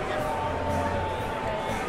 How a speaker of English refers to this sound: Well, we're inside the venerable old Commodore Ballroom. And the crowd is a little buzzed. It's a little hazy. And it's a little roasty in here.